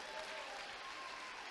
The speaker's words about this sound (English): Come on, clap your hands if you're the church.